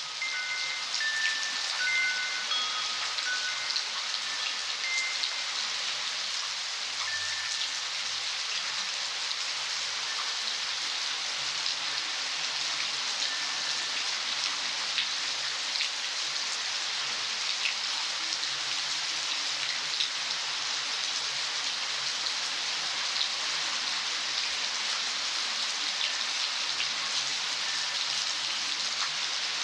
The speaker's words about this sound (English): … recorded this California rainstorm for a CD ….